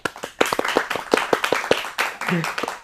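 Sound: audience clapping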